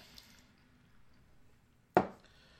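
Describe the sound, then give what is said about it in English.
After a near-silent stretch, a sudden splash of beer poured slowly from a very fresh, highly carbonated can hits the glass and dissolves into a short foaming fizz that fades within half a second. No one speaks. “Yeah, we got a lot ahead on that pour there. Very fresh. Very fresh can.”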